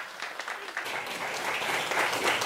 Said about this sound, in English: So let's give a big round of applause